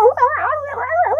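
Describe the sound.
A voice imitates the yelp of a dog grabbed by the tail: one loud, wavering cry that rises and dips in pitch for about a second, with no other talk.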